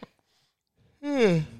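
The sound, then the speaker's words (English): A single voiced yawn, starting abruptly and sliding downward in pitch over under a second, fairly loud, after a quiet stretch with no talking. “Oh, you're yawning.”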